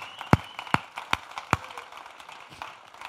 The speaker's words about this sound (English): Come on, somebody give him a hand clap of praise.